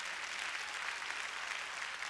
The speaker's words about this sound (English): Jesus told us about God because Jesus was God. Clap your hands and give praise to the Lord.